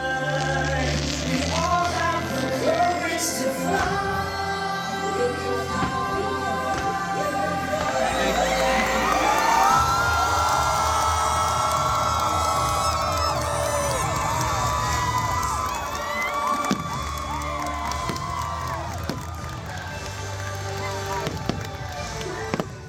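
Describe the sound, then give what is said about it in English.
A large outdoor crowd at the Happily Ever After fireworks show cheers and shouts excitedly as Tinkerbell flies, swelling to a loud roar midway, while fireworks pop and crackle throughout alongside steady background music. “But you could say that the crowd was excited to hear Tink fly.”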